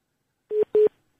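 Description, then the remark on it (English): Two short beeps of a telephone engaged tone, steady and mid-pitched, sounding clearly through a phone line with a brief gap between them and no talking. “Are they engaged?”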